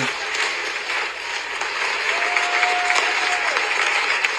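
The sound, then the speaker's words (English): A crowd claps and cheers steadily during a speech about net zero by 2050, a dense wash of applause filling the whole stretch, with a faint whistle-like tone rising briefly partway through. “What are they cheering though?”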